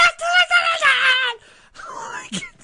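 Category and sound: vocal imitation, imitated high-pitched scream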